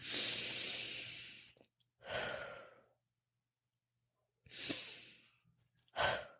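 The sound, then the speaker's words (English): Two slow, deep breath cycles, each a long airy inhale followed by a shorter exhale, with quiet pauses between them and no talking. “Let's take some deep breaths.”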